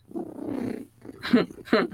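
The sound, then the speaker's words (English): A human voice imitates a cat's purr with a low, rolling rumble lasting under a second, followed by two short, louder voiced bursts, clear. “Baby, when I'm purring, I'm happy.”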